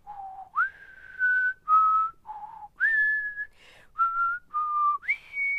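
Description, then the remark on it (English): A person whistles the opening theme of the TV series McCloud, a short tune of about nine held notes, stepping up and down in pitch with brief gaps between them. The whistling is clear, with no talking. “I loved his opening theme, though, with the whistle.”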